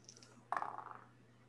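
Dice clatter across a hard surface in a quick burst of small clicks that tumble and fade within half a second, fairly loud against a quiet background. The dice are rolled for an opposed intelligence roll.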